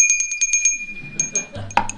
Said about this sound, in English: We might say it's like a boxing match. And I looked for a better bell than this.